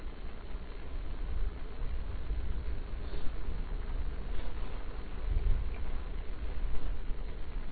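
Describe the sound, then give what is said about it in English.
Steady rain falls in a continuous, even hiss, layered over a deep rumbling low end that swells slightly at moments. No one speaks. “And by the way, we are getting rain right now, so...”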